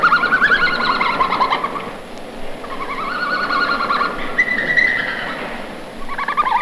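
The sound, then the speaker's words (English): A red panda twitters and whistles in several bursts of high, warbling, chirpy calls separated by brief pauses, steady in loudness, with no one talking. “Red pandas are very quiet, but sometimes they make a lot of noise. It's called twittering, tweeting, and whistling.”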